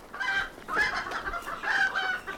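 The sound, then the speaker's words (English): Agitated chickens, bothered by kittens, cluck and squawk in a few loud, overlapping bursts, their calls harsh and rising, with no voices present. “Oh, there's those kittens bothering the chickens again.”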